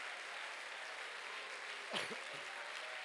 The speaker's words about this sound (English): Come on, if you're hungry for truth, you ought to clap your hands and you ought to lift your voice to the Lord.